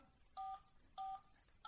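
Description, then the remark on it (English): Three touch-tone telephone dialing beeps, each a short, clear dual-pitched tone, spaced about half a second apart against a quiet background with no voices. “Can you guys decipher touch tones?”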